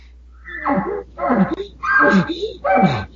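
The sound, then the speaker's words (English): A voice imitates a bull's grunt call with four rough, throaty grunts in a steady rhythm. Each is a loud, buzzy burst that bends in pitch before a short pause. “So you see I'm giving that, I'm rattling that, and you've heard bulls do that lip ball where it's just giving that vibration and then just scream behind it, and he may start with a grunt or something like this.”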